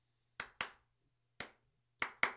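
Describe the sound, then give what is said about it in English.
Sharp hand claps keep a clap-along beat in a song, ringing out in a rhythmic pattern: a quick pair, a lone clap, then another quick pair, crisp over a faint low hum, with no voices. “Yeah, and the other really cool thing about this is the clap-along beat.”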